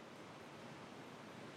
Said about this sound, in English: That's a lot of rain. We'll just go on. I don't think I've ever heard it rain that hard in here.